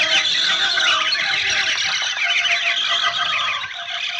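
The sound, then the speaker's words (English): A huge flock of about 10,000 parrots and macaws screams in fright at sudden rifle shots, a dense, continuous wall of shrill, overlapping squawks that stays loud and unbroken for the whole few seconds. “And as we shot, 10,000 parrots and macaws started screaming in fright at the sudden outburst.”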